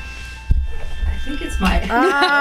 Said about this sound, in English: I think it's my alarm. Uh-oh. Alarms aren't silenced. Sorry. I had it on airplane mode because my battery was dead.